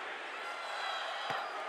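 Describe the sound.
A large crowd at an NBA game roars steadily in a dense, unbroken wash of voices chanting "sell the team", with one brief thud standing out near the end.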